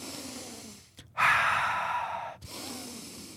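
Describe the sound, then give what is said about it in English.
A single deep, drawn-out inhale of fresh air, lasting over a second after a brief quiet pause; breathy and steady with no talking. “I literally could not be breathing in enough air. Like, it was so fresh, which sounds so dumb, but constantly I was like...”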